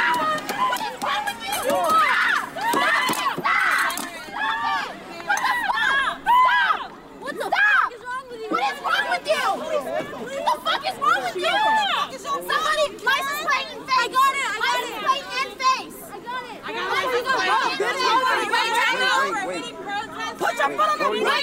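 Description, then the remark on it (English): A crowd of many voices shouts and yells over one another in a street, blocking a woman's car from driving through, in a loud, continuous clamor, with raised voices rising and falling throughout and no clear single speaker. “This woman was just trying to drive through, and there was a crowd blocking her path.”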